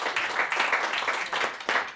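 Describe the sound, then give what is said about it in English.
An audience claps steadily for about two seconds, a dense wash of many hands with a few sharper bursts, fairly loud and without any talking over it. “We clap here. It's cool to clap.”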